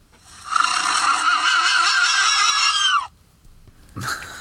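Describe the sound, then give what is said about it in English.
A horse noise sound effect: a loud, high horse whinny rises and wavers for about two and a half seconds, then breaks off. A short, harsh snort-like burst follows a moment later. “Hey, you got a horse noise, but not a goddamn dog.”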